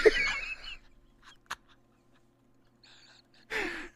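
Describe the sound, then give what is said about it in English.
A person yawns, a breathy, drawn-out vocal sigh that fades into near silence with a small click, then another airy breath swells at the end. “Just yawned at everyone.”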